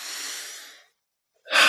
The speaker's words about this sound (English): let's slow everything down and breathe. Just notice your breathing right now. Is it flat? Is it shallow?